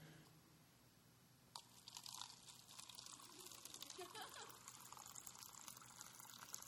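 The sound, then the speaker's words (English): After a quiet second and a half, water starts pouring steadily into a cup held by a person during an IQ test demonstration, a continuous splashing trickle that carries on to the end. “I want you to hold this cup. And I'm going to ask you a question. After I pour, okay?”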